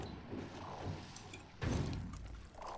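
A video game door slides shut with a single heavy thud partway through, preceded by low mechanical rumbling and followed by a brief fading rattle.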